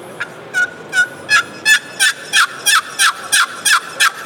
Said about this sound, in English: They haven't answered that. That's when I'm gonna go to the box call.